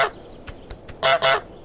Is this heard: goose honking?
yes